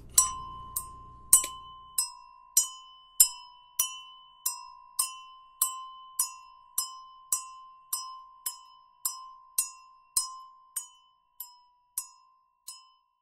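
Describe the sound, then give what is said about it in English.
A small bell rings again and again at a steady pace, about twenty bright, clear strikes, each tone lingering into the next, heard on its own with no voices. “I'm gonna just stare at a car and ring the bell.”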